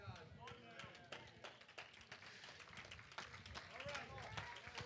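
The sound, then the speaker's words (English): Scattered, uneven courtesy hand claps from a few people in a church audience, sharp and irregular across the whole stretch, with voices murmuring underneath. “Thank you for the courtesy clap.”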